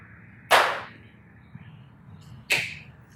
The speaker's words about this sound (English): Do you think that was a really loud clap? It doesn't need to be loud. It just needs to be a slight audible spike.